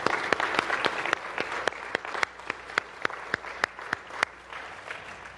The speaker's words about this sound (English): And our youth group did that this year, and I'm thankful for that. So let's give them a hand of applause.